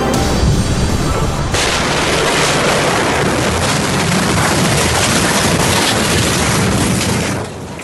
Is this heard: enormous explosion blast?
yes